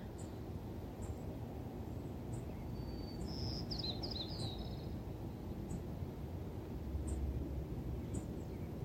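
Birds chirp and trill, with a brief cluster of quick, high warbling notes in the middle and scattered single tweets, all over a steady low rumbling background.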